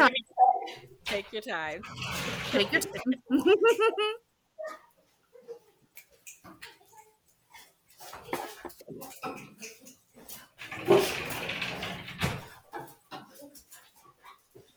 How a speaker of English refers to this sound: I'm going to stop for a second, let my dogs in because they're barking like crazy.